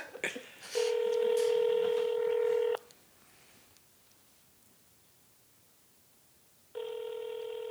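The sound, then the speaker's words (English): Electronic telephone tones as a phone call is placed: a loud, steady, buzzy beep holds for about two seconds, a quiet pause follows, then a second identical tone begins. No voices are heard. “I'm gonna give her a call after this.”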